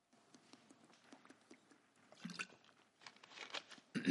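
Someone handles a plastic water bottle and takes quick sips of water, with soft clicks, crinkly plastic crunches and small swallowing noises, with no talking.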